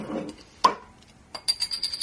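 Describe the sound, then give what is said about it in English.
A beer bottle is opened in a chemistry department: a sharp metallic click of the cap, then a brief lull followed by a run of light clinks and a thin high ringing tone. No one speaks. “Well, I have brought along a bottle of beer that I've smuggled into the chemistry department, so shall we crack that open and get on with it?”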